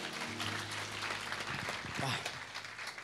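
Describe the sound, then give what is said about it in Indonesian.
An audience claps steadily for God, a dense crackling wash of many hands with a low sustained hum and a voice briefly rising through the middle of it. “Boleh tepuk tangan buat Tuhan, saudara.”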